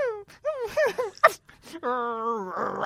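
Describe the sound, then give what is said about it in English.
A person imitates John Travolta making the dog noises for Bolt: a quick run of whiny, whimpering yelps, then a longer drawn-out howl ending in a breathy huff, moderately loud, with no other talking. “I was amused at the idea that John Travolta did all of the voice for Bolt, including having to make the dog noises. Just imagine him going...”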